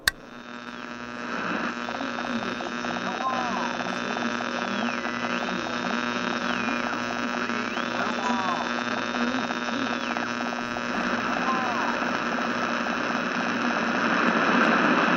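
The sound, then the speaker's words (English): A humming, crackling radio transmission: a steady electrical buzz under hissing static, with a warbling electronic tone that steps up and down, continuous throughout and fairly loud, with no voices. “Are you ready for the transmission?”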